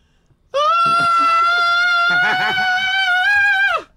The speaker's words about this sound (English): Now, that is literally the highest pitch that I can scream.